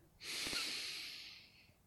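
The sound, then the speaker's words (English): A single long, deep inhale through the nose during a guided breathing exercise, a breathy hiss that swells quickly and then slowly tapers off over about a second and a half. “Breathing in.”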